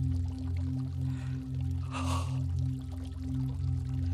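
Rushing water of raging river rapids churns steadily over a deep, constant droning hum, with a louder surge of splashing roughly halfway through before settling back to a continuous roar.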